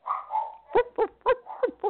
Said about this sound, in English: All right, she's there, and Mister's on the beat. I don't know why he's barking.